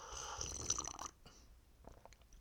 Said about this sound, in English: Let me give you guys a little ASMR first. I'm sipping on a little bean juice right now.